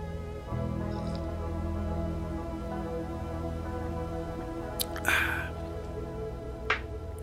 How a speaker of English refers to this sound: So I'm going to take a sip. I suggest if you have a coffee with you right now, maybe you'll take a sip too. Hang on.